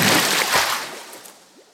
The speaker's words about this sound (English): Splashes next to you.